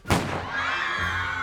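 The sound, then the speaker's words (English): A single sharp gunshot fired inside a bank cracks out loudly, then gives way to a sustained, high wavering tone that hangs on for over a second with no talking. “But suddenly, a gun fired in the bank.”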